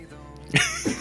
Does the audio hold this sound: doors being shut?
no